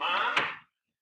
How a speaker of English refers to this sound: I started writing him a note, and I heard the front door open and his voice.